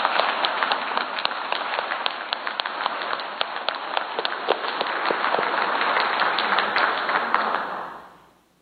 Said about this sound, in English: Let's give these boys a round of applause.